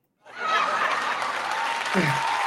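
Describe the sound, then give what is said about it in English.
A hand clap sound effect: a loud, dense burst of applause that starts abruptly and holds steady for a couple of seconds, with faint crowd voices mixed in near the end. “God damn, late ass hand clap.”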